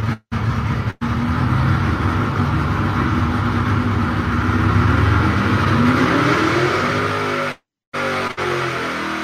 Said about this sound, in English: So let's watch an old 1999 steel-headed Pontiac engine go through a quick dyno pull at Gary Stinnett Raceway.